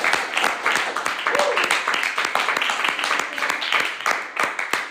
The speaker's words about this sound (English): Let's clap our hands.